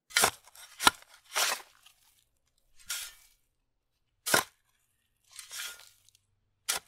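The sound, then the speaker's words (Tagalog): A tool repeatedly bites and scrapes into soil as it is tilled, about seven gritty, crunching strikes at an uneven pace with short pauses between them. No voices are heard. “At tuwing hindi ko na kaya, nagbubungkal ako.”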